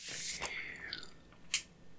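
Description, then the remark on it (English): A crunchy bite into a crisp, honey-flavored toaster waffle that looks like a whole-grain waffle, followed by a few moist chewing crunches and a sharp crackle near the end, with no talking. “The second after you take a bite, after your second chew, you realize that it tastes like you're eating dirt.”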